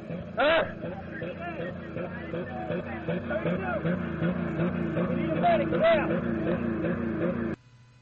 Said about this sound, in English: And clearly the engine is revving because his foot is probably stuck on the gas as the car is actually in park.